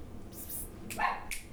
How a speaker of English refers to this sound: Sorry, my dog is barking at probably children.